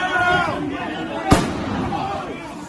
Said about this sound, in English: Okay, so you hear a gunshot. We don't know who shot her. I guess it was a Secret Service.